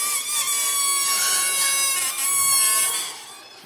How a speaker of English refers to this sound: Now everybody make a noise with your balloon. Come on. Does that sound like your neighbor or your kids or the dog when you don't want to get out of bed?